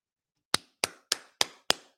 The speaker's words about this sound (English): Claps for Chaz Nimrod.